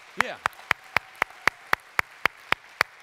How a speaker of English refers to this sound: Give God a hand clap. Don't halfway do that.